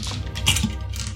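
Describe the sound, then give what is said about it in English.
Small hard percentile dice clatter and tumble across a tabletop, a quick run of light clicks and rattles, moderately loud, with no talking. “With great relish will I roll a percentile dice.”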